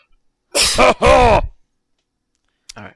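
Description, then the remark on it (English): A person coughs twice in quick succession, loud and harsh, then after a short pause lets out one brief, quieter throaty burst. “Excuse me, have to cough.”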